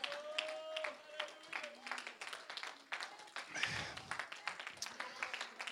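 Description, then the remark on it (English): A worship audience claps steadily and energetically in praise, the dense hand claps lively, with voices calling and singing over them throughout. “Keep on clapping.”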